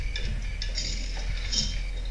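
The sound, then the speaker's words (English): Metallic clinking and jangling in uneven bursts, like chains being rattled, with bright high-pitched links over a steady low rumble. No voices are heard. “She didn't tell him about the noises. Oh. Chains.”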